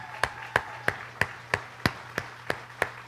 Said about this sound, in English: If you went to the conference, you went to the Iron Sharpens Iron Men Conference, would you please stand? I'd like the rest of you to give them a big round of applause.